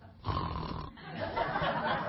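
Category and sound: human body sound, person snoring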